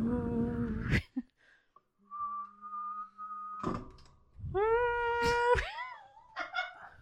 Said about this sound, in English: You just hum and whistle at the same time. Well, not hum, but like just long.